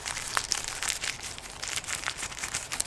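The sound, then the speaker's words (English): Paper being folded crinkles and rustles continuously for a few seconds, with dense crackly snaps and occasional sharper crunches, moderately loud, with no voices. “I didn't know folding paper was to go.”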